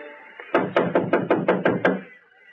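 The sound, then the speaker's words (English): Seven quick, evenly spaced knocks rap on the door of a shanty by the freight yards, fairly loud, over a faint steady background hum with no one speaking. “Go on, knock.”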